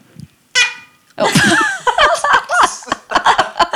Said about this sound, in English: That's the saddest cork sound ever. That was not very sad. It was like, boom. Well, it's a huge cork, so.